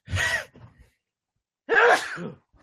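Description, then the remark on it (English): Two loud, harsh coughs with a pause of over a second between them, the second burst longer and rougher than the first; no talking. “Sorry, no cough button on this bad boy here, like we had in radio.”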